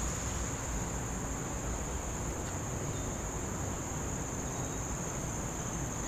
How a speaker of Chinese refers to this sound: 嗯，这边是知了的声音吗？ 有知了的声音。